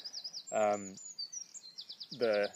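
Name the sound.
birdsong outdoors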